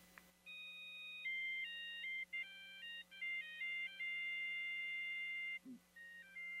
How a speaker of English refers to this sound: We have several different beep eggs, a Western beep egg, a patriotic beep egg, a love song beep egg, a children's beep egg. They all play different melodies and indicate the doneness of the eggs.